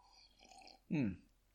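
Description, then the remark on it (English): A single sip and swallow of bourbon from a glass, a short throaty gulp with a low grunt, surrounded by quiet room tone and no talking. “I need a sip of bourbon to make up for this.”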